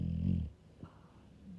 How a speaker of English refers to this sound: Could you hear that? I don't know. Maybe you couldn't hear that. She's snoring very loud, my dog.